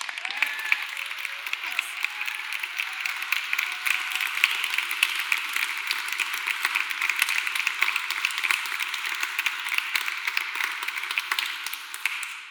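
Steady applause from an audience, many hands clapping in a dense, even patter that holds at a constant level for about twelve seconds before tapering off at the very end. No voices are heard.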